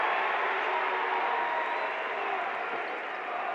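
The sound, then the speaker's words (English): A large arena crowd at a Utah Jazz basketball playoff game chants "bogey" in unison, a loud, steady wall of massed voices that holds level for several seconds without a break. “Crowd chanting bogey.”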